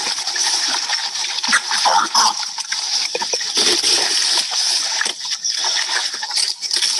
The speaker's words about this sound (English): Now, this is not a picture of a young people's camp. This is a picture of pigs feeding. So I want you to understand what feeding pigs look like. I hope the sound comes through.